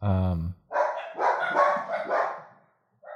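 A dog barks: one deep, resonant woof, then a rough, noisy burst of barking lasting about two seconds before it trails off into quiet, with a brief yelp at the end.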